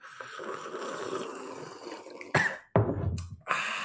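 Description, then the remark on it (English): Loud slurping sips of a hot drink with whole milk in it: a couple of sharp, airy sucking bursts after a stretch of low rustling noise, with a short silent gap between them. “Guys, it's time for First Sips, the time of the program where we take sips obnoxiously loud and then discuss what this blog is actually about.”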